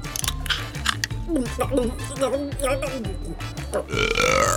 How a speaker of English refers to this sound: I always forget how Fizz Bang makes me burp whenever I drink it. Well, maybe don't drink it so fast. Those bubbles sure do a number on you.